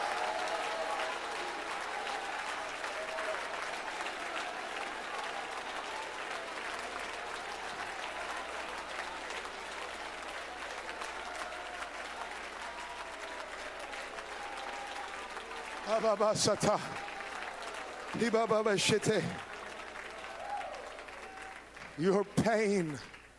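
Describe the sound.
An audience at a worship service stands and claps steadily in a dense, continuous wash of applause for about sixteen seconds, then a loud voice calls out in short bursts over the ongoing clapping.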